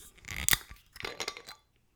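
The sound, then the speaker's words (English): A spirit bottle's screw cap twisted open, giving a short run of crisp crackling and clicking as the seal breaks, then a second grinding burst before silence. “Got a screw cap.”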